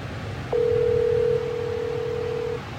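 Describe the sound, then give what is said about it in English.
A single steady electronic telephone tone on a call to a work phone that goes unanswered and is forwarded, holding one pitch for about two seconds, then dipping slightly in volume before cutting off, heard alone over faint background hum. “He could have answered the work phone.”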